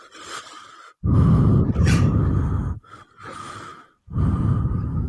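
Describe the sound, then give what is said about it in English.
A voice imitates heavy mouth breathing, like the big guy called the Ox breathing in a fighter's ear while holding him with his arms around him. Long rasping inhales and exhales come loudly in a steady rhythm, with short pauses between the huffing breaths and no words. “You know he's just breathing real heavy in his ear as well because he's literally, like, arms around him, just like...”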